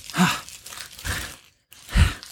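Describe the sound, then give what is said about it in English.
The plastic packaging of a brand new jacket harness crinkles and rustles in three loud, scratchy bursts as someone tugs at it trying to tear it open, with a brief silent pause before the final strong crunch. “So I bought a new one. I'm going to open it right now. Oh, frick, I can't open it.”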